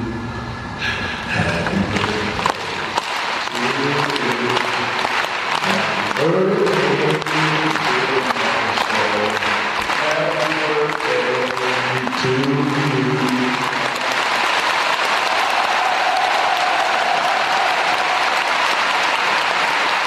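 A large arena crowd applauds steadily for about twenty seconds as Dennis Rodman walks to the microphone, a dense wash of clapping, with a few louder voices and cheers rising over it partway through.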